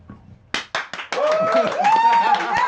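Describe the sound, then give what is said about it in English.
After a brief quiet moment, a few sharp, separate claps ring out, then a live studio audience, clapping on cue at a make-believe applause sign, breaks into loud, sustained applause with whoops and cheering voices carrying over it. “They clap on cue.”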